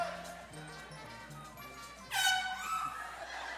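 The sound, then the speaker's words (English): A loud, brassy horn honk sounds about two seconds in and holds for over a second, cutting sharply over a steady, quiet ticking background; the horn is honked to stop the clock in a timed game. “You got to run back and honk the horn. That'll stop the clock.”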